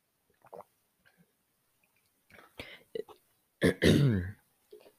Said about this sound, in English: Let me get a sip of my water here.